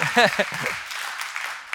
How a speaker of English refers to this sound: Yeah, go ahead. Now you're wanting to clap. Thank you.